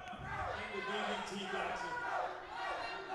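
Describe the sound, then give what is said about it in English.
A wrestling crowd boos and jeers at a piledriver move in a steady, loud roar of overlapping voices that swells and dips, with wavering drawn-out tones running through the three seconds. “The crowd doesn't like the pile driver.”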